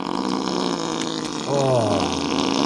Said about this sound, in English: See what happens when you fart? You know, you get stuck.